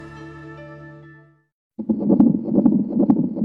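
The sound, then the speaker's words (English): A sustained musical chord fades to silence, then a baby's heartbeat on an ultrasound monitor starts: rapid, rhythmic whooshing pulses over a low, murky rumble, fairly loud and without any talk. “Imagine that that's your baby's heartbeat, and it's clear evidence of a life growing in your womb.”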